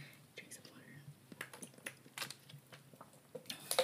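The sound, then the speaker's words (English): Quiet sips of water with soft wet mouth clicks and swallows, irregular and brief, plus a faint breathy sound; no one speaks. “Let me take a water break.”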